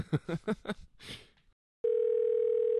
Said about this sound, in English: My phone's ringing. I think I know who that is.